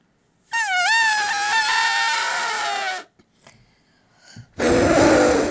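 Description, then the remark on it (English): A person imitates an elephant's trumpet with a loud, high, wavering blare lasting a few seconds, then a short pause with faint rustling, then a second loud trumpeting burst. “I'll try to do my elephant impression.”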